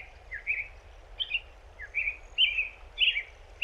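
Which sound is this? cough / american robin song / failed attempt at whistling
american robin song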